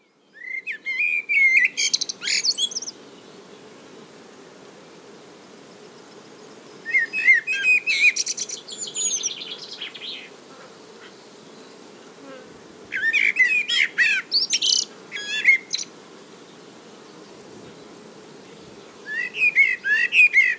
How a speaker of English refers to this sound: That species is probably one of my favourite songs, to be honest. It's the blackbird. Something about that song, you know, it's just these liquid notes, quite a deep melodic verse.